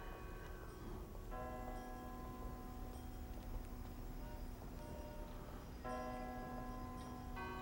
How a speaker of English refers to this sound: And just when you think all you're watching is Thanksgiving singing, here comes another toll on the bell.